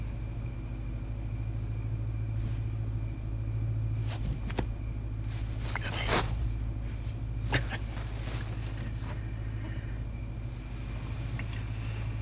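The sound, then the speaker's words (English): A car engine rumbles steadily for the whole stretch as Rod's TSA car drives off in a movie scene, a deep continuous drone with a few brief sharp clicks and rattles over it, and no one speaking. “They have one last humorous exchange and they drive off.”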